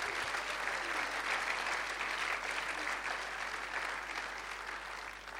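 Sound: audience clapping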